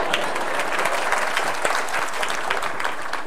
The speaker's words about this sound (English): Who's read it? Stand up. Give yourselves a huge clap.